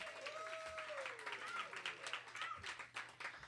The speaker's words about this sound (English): Maybe give some applause for the ladies. This is great.